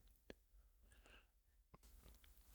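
A quiet gulp of coffee: a wet click, a soft swallowing slurp, then another sharp mouth click, with no talking.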